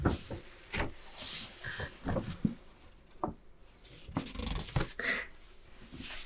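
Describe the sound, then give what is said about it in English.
A paper map of all of New Hampshire, printed on nice, slightly structured paper, is unfolded, with several crisp crinkling and rustling bursts of paper over a few seconds, irregular and moderately loud, with no talking. “This is really nice paper. I noticed this on some of the other sort of newer maps here too.”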